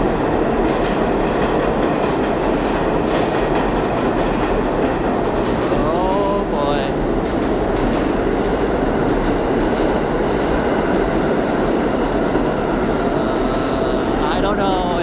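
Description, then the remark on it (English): An A train subway train roars loudly and steadily through a station, with high metallic wheel squeals rising briefly midway and again near the end. Any voices are buried under the rumble. “Oh, and now another one, the A Train.”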